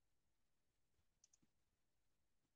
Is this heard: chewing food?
no